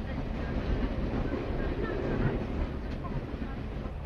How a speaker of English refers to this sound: Well, the train journey is coming near an end now, with the slowing down as we approach Maynooth, past the wall of St. Patrick's College, and around the corner with the canal into Maynooth Harbour.